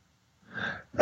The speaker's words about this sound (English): I almost never sneeze on the show.